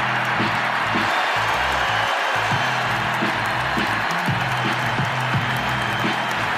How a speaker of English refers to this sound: Yeah, I'm going big deal. It was obviously a great ovation for him from the Portland crowd. He certainly appreciated it.